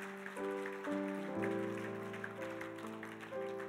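A church audience claps for a sister in a dense, crackling wash of applause, while sustained keyboard or organ chords hold and shift underneath at a fairly even level.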